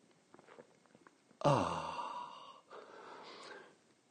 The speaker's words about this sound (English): Fill it with your favorite liquid, I like coffee. And join me now for the unparalleled pleasure, the dopamine hit of the day, the thing that makes everything better, the simultaneous sip. Go.